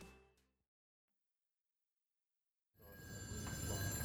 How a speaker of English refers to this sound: The office phones wouldn't stop ringing.